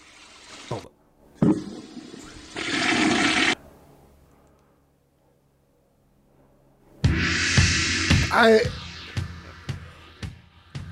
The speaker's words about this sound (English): this sure sounds like a turd hitting the toilet water